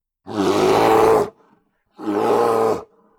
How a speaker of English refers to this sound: A roar, but not the roar of a Hork-Bajir.